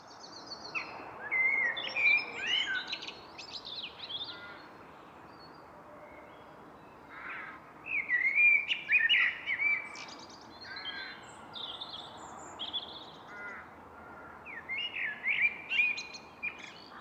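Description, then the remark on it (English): A blackbird sings rich, fluting phrases in bursts with short pauses around 6 o'clock in the evening, while other birds, including rooks and robins, chirp and call in the background, all outdoors with a soft ambient hush and no talking. “It was taken about 6 o'clock in the evening. That's another time when blackbirds like singing, isn't it?”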